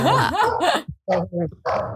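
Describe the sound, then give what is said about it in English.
Two dogs bark excitedly after someone knocks on a neighbor's door, a loud tumble of overlapping barks and high yips in quick bursts with brief gaps between them. “I have two dogs, so they just go crazy.”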